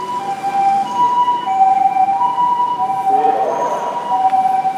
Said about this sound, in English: Fucking ambulance. Hold on a second.